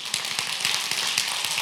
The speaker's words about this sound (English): Now see, that kind of bothers me a little bit, because that was a sympathy clap. Y'all clapped out of sympathy that time, for me and for whoever clapped by themselves. I can tell you, that's exactly what that was.